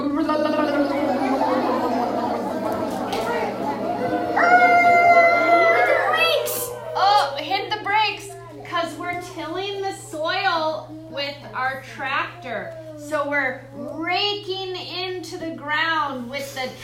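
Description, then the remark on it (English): A group of children pretend to drive a farm tractor, hands on the wheel, making rumbling, sputtering tractor noises with their mouths for several seconds, a low buzzy drone with a brief steady hum, before an adult voice starts talking. “And let's make tractor noises with our mouth.”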